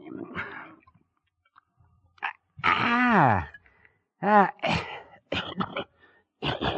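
A person splutters and coughs after swallowing a swig of a homemade drink the wrong way. The irregular bursts are loud, with gasps and strained, whimpering vocal sounds in between.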